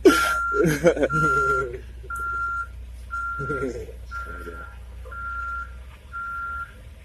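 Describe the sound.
A truck's reversing alarm beeps steadily at a workplace, about seven evenly spaced tones, over a low engine rumble while people talk.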